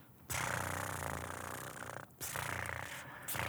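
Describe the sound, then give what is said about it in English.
A person imitates a cat's purr, making a steady, rumbling vocal drone that runs for a few seconds with brief breaks for breath. “Purring like a kitty.”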